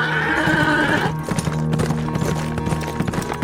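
A horse whinnies briefly, then its hooves clip-clop on the road into the outskirts of the town of San Leon in a steady rhythm of sharp, repeated knocks lasting several seconds.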